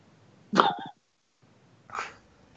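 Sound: dog groaning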